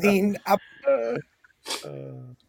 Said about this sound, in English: y'all heard me sneezing. I've done it quite a few times here on the Old Men's Podcast show.